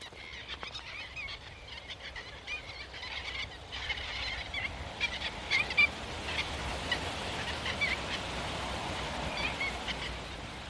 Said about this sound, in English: Their wings make a wonderful quiet whoosh as they pass over. They do, yeah. It's a sound you never tire of, yeah.